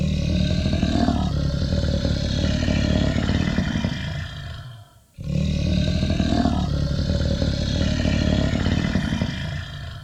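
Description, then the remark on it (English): A Bengal tiger roars loudly, two long, rumbling roars separated by a brief gap, with no voices present. “If you're out in the jungle, that will get your attention.”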